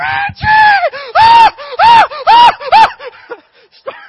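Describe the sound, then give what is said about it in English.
A voice imitates excited, high-pitched screaming in a quick run of about five loud, rising-and-falling shrieks, intense, trailing off into a few softer yelps. “Start screaming.”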